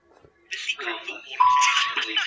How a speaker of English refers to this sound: Hello. I love the buzzers.